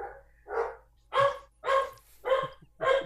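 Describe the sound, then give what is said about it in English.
Household dogs (a Chesapeake Bay Retriever, a chocolate brown retriever and two rescue dogs) bark repeatedly in a steady series of about five or six sharp woofs, fairly loud, preceded by a softer whine-like yelp; no one speaks. “Dr. Sylvia Earle's dogs, everybody. It's the time of the day, the barking time.”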